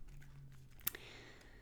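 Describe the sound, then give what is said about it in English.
Quiet shuffling of a deck of empowerment cards just taken out of their small box: soft papery rustling with one crisp snap of cards partway through, then a light flutter trailing off. No one speaks. “I am pulling them out of this cute little box that they come in, and I'm shuffling them up. Like a deck of cards.”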